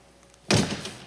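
A single heavy door slams shut with a sudden loud thud, followed by a brief rattling decay, after a moment of near silence. No voices are heard.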